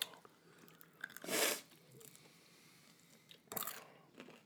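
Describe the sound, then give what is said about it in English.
Someone chews chicken wings from Hot Mama's Wings with wet, crunchy bites: two loud crunching bursts stand out among softer, irregular chewing noises, and nobody speaks. “I can't waste a wing, so I'm going to finish my chicken.”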